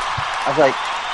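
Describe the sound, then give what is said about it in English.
A short burst of crowd applause, a steady wash of clapping with a single cheering voice rising briefly in the middle, loud throughout. “Crowd.”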